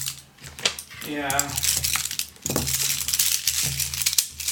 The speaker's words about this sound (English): Now all the pens are on the floor and I can't make any notes.